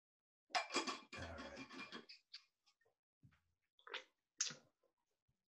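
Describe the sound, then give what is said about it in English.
A can of Sapporo Classic beer is cracked open with a fizzy hiss, then a few short, scattered liquid sloshes and gulps from drinking after a toast, with no one talking. “So I just really want a drink. So I'm going to open.”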